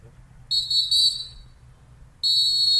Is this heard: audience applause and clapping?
no